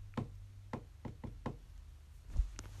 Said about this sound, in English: That's when he heard a knock.